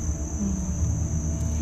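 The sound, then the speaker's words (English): Cicadas drone in a steady, unbroken high-pitched buzz throughout, fairly loud and even, in summer at Riverside Cemetery in the Montford neighbourhood, with a low background rumble underneath and no one talking. “But, and also it's the cicada year, so you may hear our friends the cicadas, who've been putting on quite the show this summer.”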